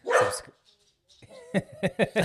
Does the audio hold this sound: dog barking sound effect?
yes